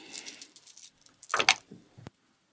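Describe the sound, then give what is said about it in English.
A handful of damage dice, seven four-sided and two ten-sided, clatter and rattle across a surface, a quick run of light clicks building to a louder tumbling burst, then one sharp final click before silence. “Make way for damage dice.”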